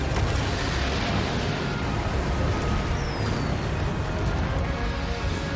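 Fireworks rumble and crackle in a dense, unbroken barrage that stays loud throughout, with a brief whistling streak cutting through partway. No voices are heard.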